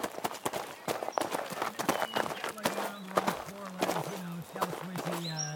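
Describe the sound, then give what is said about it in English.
Rapid, percussive hoofbeats of a running mountain horse, a dense clattering rhythm, with a low voice humming or speaking over the second half. “Did you hear that? The mountain horse! It is real!”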